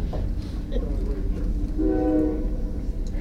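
A weekly passing train rumbles past with a steady low roar, and a single sustained horn blast sounds about halfway through, fairly loud against the continuous rolling noise.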